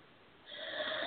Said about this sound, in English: I'm just yawning.